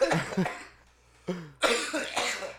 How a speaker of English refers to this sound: I'll get into a coughing fit. Oh, God, it's too late.